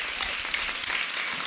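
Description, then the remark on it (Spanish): A small child claps hands in a quick, uneven patter, steady for a second and a half, with a couple of sharper claps standing out and no voices. “Un espíritu soberbio tan lindo, aplaudiendo, mi cielo hermoso.”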